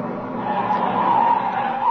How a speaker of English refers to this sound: Hey, wait a second. Look at that car come up here.